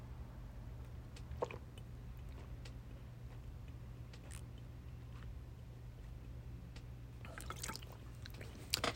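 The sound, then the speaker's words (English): Quiet sipping from a glass of water: faint wet mouth clicks and small swallowing sounds over a steady low hum, growing busier toward the end, with no one talking. “I really wanted to get into this Easter thing because I'm going to take a sip of my water, and then I'm really going to dig deep into this.”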